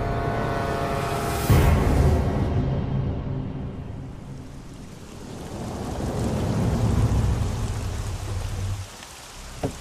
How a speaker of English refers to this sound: It was raining heavily when we arrived at the gates of the Black Keep.